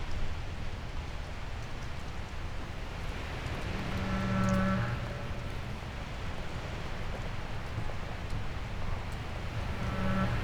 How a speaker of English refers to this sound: We'll leave you with these sounds as we sit here and enjoy the sounds in this garden, rain falling on the fallen leaves.